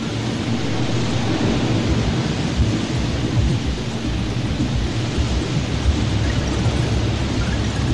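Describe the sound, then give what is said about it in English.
A loud, steady roar of a huge rush of water pouring out of pipes, dense and rumbling with a heavy low-end churn, unbroken for the whole stretch with no voices. “Suddenly, a huge rush of water poured out of the pipes.”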